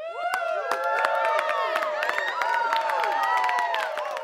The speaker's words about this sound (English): So let's give it up for Jessica McCabe. So clap wherever you're listening to this and give it up for Jessica McCabe.